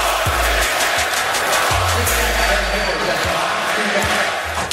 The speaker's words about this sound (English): Down low to Porzingis. He puts him up. Shot and hits. This crowd is roaring.